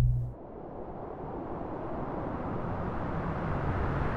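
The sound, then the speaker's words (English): A dark synthesized wind sound from a synthesizer preset called Dark Wind: a steady, rumbling wash of filtered noise, heavy in the lows, that slowly brightens and swells over a few seconds, with no voices. “Dark wind.”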